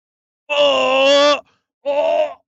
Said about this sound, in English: Oh, feminist roar. I think I just heard a bunch of women dropping their bras. Oh, perfect. They're charging.